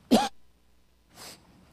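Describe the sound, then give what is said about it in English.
A sharp cough bursts out, followed about a second later by a second, softer and breathier cough. No talking accompanies them. “When I cough into this thing, it sounds pretty bad.”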